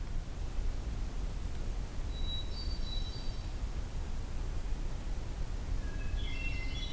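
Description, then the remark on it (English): A magnolia warbler's short, high song phrase comes twice, faint, once early and again near the end, over a steady rushing background noise with no talking. “So I'm going to go with magnolia warbler on that.”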